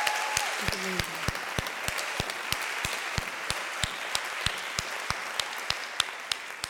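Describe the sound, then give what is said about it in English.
An audience applauds steadily, a dense wash of many hands with sharper claps punching through in an even, regular rhythm, sustained at a fairly constant loudness throughout, clapping in thanks for a song by the church's middle church choir. “We didn't get to clap for that amazing song.”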